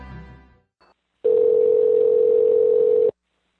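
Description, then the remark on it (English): A steady, loud telephone dial tone hums for about two seconds after a phone call drops, following a brief bit of muffled noise, then cuts off abruptly. “after massive technical failures, we finally get Bruce Boxleitner back on the phone”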